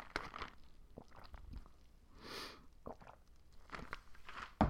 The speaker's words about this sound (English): Hold on, I gotta take a sip. We've been recording a long time.